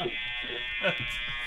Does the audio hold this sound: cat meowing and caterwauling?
no